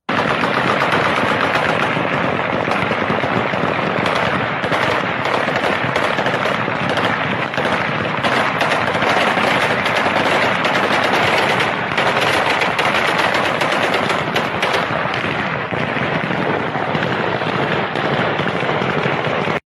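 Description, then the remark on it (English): Celebratory automatic gunfire by the Taliban in Kabul, right after the last plane took off from Kabul airport, rattles nonstop, with dense overlapping bursts and sharp cracks layered into a loud, continuous roar that never lets up for the whole twenty seconds. “This is the celebration of the Taliban.”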